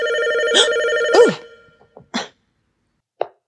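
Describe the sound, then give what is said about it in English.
A telephone rings with one steady, fairly loud electronic tone for just over a second, then stops. A few short, sharp clatters follow, then a single faint click. “Yeah, see, about the phone.”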